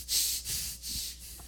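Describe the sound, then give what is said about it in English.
A person imitates angry, heavy breathing through the nose: three or four quick, forceful hissing breaths in a steady rhythm, with no talking. “You know when you get angry and your breathing gets really fast and heated, and usually when you're really, really angry, your breathing is mostly through your nose because you're like...”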